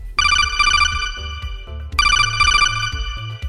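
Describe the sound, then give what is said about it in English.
A phone ringtone for an incoming caller plays loudly, two bright trilling bursts repeating in a steady pattern over a low rhythmic backing, with no one speaking. “All right, how about we go back to the phones here, take another call.”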